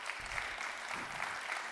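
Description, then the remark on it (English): An audience claps for Jesus at a speaker's call, a dense, even wash of many hands with no pauses, fairly loud throughout and no voices over it. “If he's done that in your life, give him a hand clap right now.”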